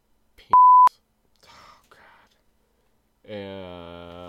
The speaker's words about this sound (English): You can't say that, man. Dang it. Man, we're gonna have to beep a lot out on this episode.